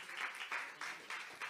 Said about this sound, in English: Hallelujah. Give the Lord a hand clap of praise.